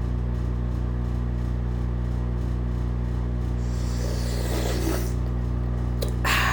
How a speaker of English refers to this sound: Hold on a second. I gotta sip some of my tea.